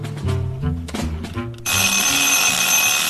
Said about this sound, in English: There goes the timer. Time to get the quiz out of the oven.